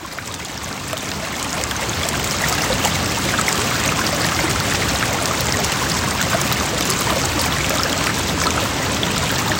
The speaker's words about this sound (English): then eventually come to a bridge which crosses a major, major stream. It feels like a river. Mm-hmm. This isn't New River. This is sort of like a tributary. Yeah. It was an awesome bridge because like the sounds of the water were just stunning.